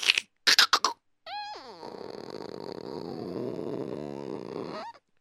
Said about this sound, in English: Ooh, it hasn't been open in a long time. Let's see if these keys work. Let me open the door.